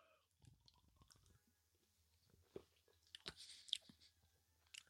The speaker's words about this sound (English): But anyways, back to Slayburner. This is another one of my favorite variants of Hayburner. So let's get another sip here.